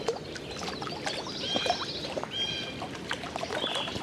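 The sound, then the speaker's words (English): A blue jay gives a few loud, harsh, scratchy cries, two longer calls then a shorter one, over a steady wash of waves; no one speaks. “Here comes a blue jay. Hear that loud, harsh cry?”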